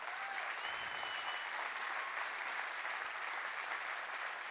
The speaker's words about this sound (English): The volunteers here, the best. We seriously have the best volunteers. And all of you, yeah, clap for them.